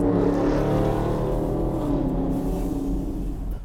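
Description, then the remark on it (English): A Dodge Charger's exhaust roars steadily and loudly as the car speeds along Passyunk Avenue, a deep rumbling engine note with a slight pitch sweep as it revs, continuous for a few seconds with no talking. “It's a Dodge Charger.”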